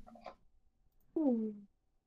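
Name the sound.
cat meowing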